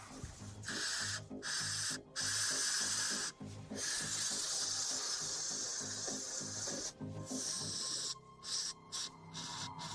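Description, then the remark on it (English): Bear spray hisses loudly in long, sustained bursts from an aerosol canister, sprayed at mice to wake them, broken by a few brief pauses, with faint clattering underneath and no talking. “You want a little bear spray?”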